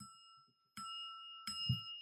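A small bell is struck three times with a wedding ring as a toast, each hit giving a bright, sustained ringing tone that carries into the next strike, spaced roughly evenly.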